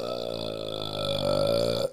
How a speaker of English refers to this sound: Damn, that was a long burp. God damn. This means a professional burper.